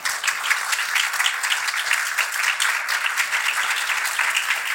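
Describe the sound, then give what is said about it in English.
A crowd applauds three speakers steadily, many hands clapping in a dense, sustained wash of bright crackling sound that holds at an even loudness throughout, with no voices over it. “Can I have a huge round of applause, please”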